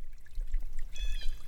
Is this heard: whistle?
no